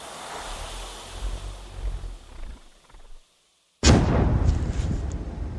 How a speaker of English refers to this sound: Now, because it landed way over the wall, the soldiers can't see the explosion. They don't know what's happened.